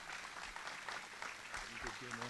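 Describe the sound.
A single person claps in a quick, steady run of hand claps throughout, fairly close and moderately loud, as a voice begins speaking underneath near the end.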